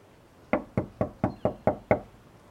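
Seven sharp, evenly spaced knocks on a door fitted with a Ring camera doorbell, in quick succession, fairly loud, each with a brief hollow decay, with quiet background before and after.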